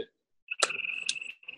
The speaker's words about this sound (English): Damn, boy, them crickets loud as shit. Hell yeah. I heard a frog earlier. Did you hear that shit? Yeah, when we first started hearing a frog. I'm out here in the DR, the PR of Maryland.